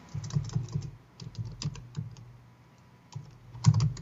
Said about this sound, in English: The scintillating sounds of typing.